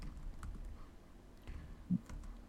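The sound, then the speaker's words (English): Soft, irregular clicks of someone typing on a computer keyboard while looking something up, fairly quiet, with one slightly louder keystroke near the end and no talking. “I'm typing right now.”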